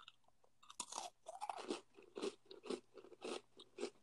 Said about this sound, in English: Wait, hold on. Can I just crunch my cookie?